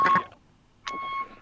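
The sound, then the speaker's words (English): Two loud electronic beeps, steady and mid-pitched, separated by a short silence, the repeating warning tone of a bus reversing. No one speaks. “the bus backing up.”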